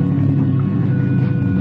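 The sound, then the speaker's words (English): A boat's engine drones steadily as the boat comes in toward people on a beach, a continuous low rumble with a faint humming tone over it, holding the same loudness throughout with no voices. “The boat is coming in at us now.”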